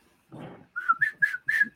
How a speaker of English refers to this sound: Tried whistling it.